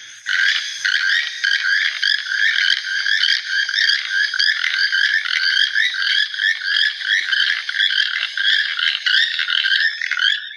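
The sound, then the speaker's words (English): A keel-billed toucan, about 20 inches long with an orange, red, green and black canoe-shaped bill and a yellow breast, gives a steady, rapid run of dry, frog-like croaking notes, repeated loudly and without pause for about ten seconds, with no voices. “It has a glorious orange, red, green, and black canoe-shaped bill.”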